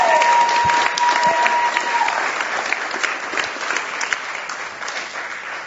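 An audience claps steadily, a dense wash of many hands that stays loud before easing slightly toward the end, with a brief whistle-like tone audible in the first couple of seconds.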